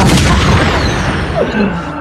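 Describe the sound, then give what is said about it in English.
A loud, dense barrage of gunfire sound effects, booming shots blurring together into a continuous roar of rapid blasts with heavy low rumble, sustained for the whole moment. “I mean, not even shots, because that guy's cue the fucking gunshots.”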